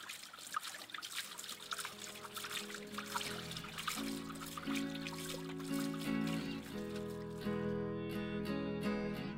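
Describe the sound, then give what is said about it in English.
Fountain water splashes and trickles over rocks in a steady, continuous babble, with sustained ringing tones sounding beneath it and the sound thinning out near the end. No one speaks. “You know, the sound that splashes over the rocks is very relaxing.”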